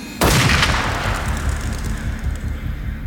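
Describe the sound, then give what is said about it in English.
A single loud gunshot cracks sharply in still, foggy morning air, then its echo rolls and rumbles away slowly for several seconds through the trees. No voices. “Suddenly, the crack of a gunshot rolls through the trees.”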